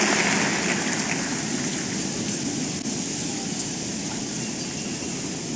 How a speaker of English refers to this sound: Give the Lord a big hand of praise and please be comfortably seated.